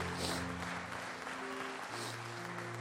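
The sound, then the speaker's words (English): An audience claps steadily in praise of Jesus, a dense, continuous wash of applause, with sustained low organ or keyboard chords held underneath throughout. “Come on, can you just give Jesus a hand clap of praise in the house today?”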